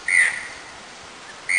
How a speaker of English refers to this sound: I just clicked on bird sound effects. Let's try this one.